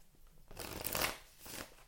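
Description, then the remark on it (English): A deck of cards being shuffled for a Pisces card reading, a quick riffling burst of papery flutter that swells, fades briefly, then ends with a shorter second flurry. “Let me give it one more shuffle.”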